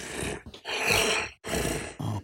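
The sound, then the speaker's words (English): Heavy, raspy growling breaths from a creature, several long noisy exhales and inhales with brief pauses between them, loud, with no talking. “So we hear stuff. We hear potentially breathing.”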